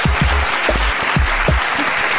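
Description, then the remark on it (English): A round of applause for a guest arriving in a room full of microphones and lights, streamed on Instagram Live: dense, steady clapping that stays loud for the whole stretch, with a few low thuds mixed into the wash of hand claps. “Let's give him a little bit of a round of applause.”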